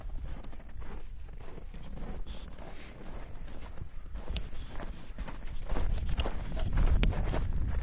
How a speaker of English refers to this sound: I like that snow crunching sound too.